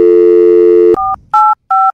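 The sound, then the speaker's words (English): A steady phone dial tone cuts off, followed by three short electronic keypad beeps in quick succession as a phone number is dialed, each a clear two-note touch tone, loud with no talking. “Instead of six, we're going seven. Dialed.”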